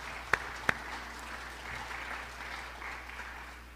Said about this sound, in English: So let's give him a clap, all right?